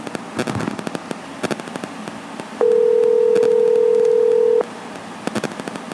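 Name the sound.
phone call ringing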